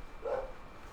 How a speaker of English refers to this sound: So, you know, those are the dogs upstairs. You know, they're trying to agree with us. Yeah, if you hear them, I don't know if you hear them.